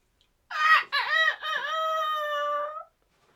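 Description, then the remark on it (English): A person imitates a rooster's crow: one loud, drawn-out cock-a-doodle-doo lasting about two seconds, with a choppy start and a long held ending, performed alone. “Yeah, it's not my best rooster.”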